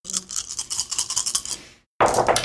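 Eight dice rattle rapidly for under two seconds, a bright, scratchy clatter, then a brief pause before a sharp burst of the dice tumbling out and clicking together. No one speaks.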